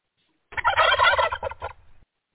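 A turkey lets out one loud, rapid, warbling gobble that lasts about a second and a half, then trails off into a softer rattle, with no one talking.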